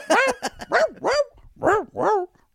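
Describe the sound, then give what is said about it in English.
A string of pitched dog barks from a novelty CD of dogs singing songs rises and falls in a sing-song pattern, like dogs barking out a melody. About six loud barks come in a bouncy rhythm, with no talking. “Y'all, if you like that CD of dogs singing songs, something's wrong with you.”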